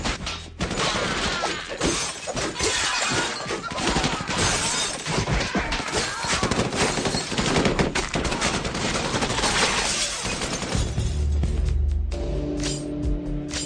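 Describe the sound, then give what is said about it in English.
Rapid, dense gunfire from two pistols in a movie gunfight, shots cracking in quick bursts with shattering glass and debris, loud and continuous, ending in a low rumbling impact and ringing tones. “And that is the handle of the gun fight, where he has two pistols, yeah, and he's just yeah.”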